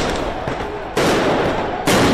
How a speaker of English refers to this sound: A little sound from Israel this morning, as protesters throw fireworks at the police and a few skirmishes break out here.